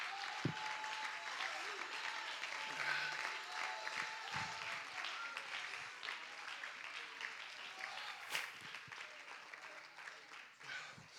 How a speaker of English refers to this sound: Come on, clap your hands and make a joyful noise unto the Lord.